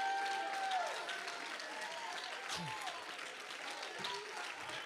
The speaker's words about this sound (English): If you believe that, clap your hands and shout to the Lord.